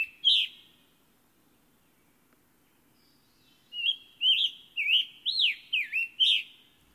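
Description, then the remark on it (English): A scarlet tanager sings clear, slurred, robin-like phrases: one short note, a pause, then a quick run of six or seven burry warbled notes, fairly loud. “But the tanager loses nothing by a near view.”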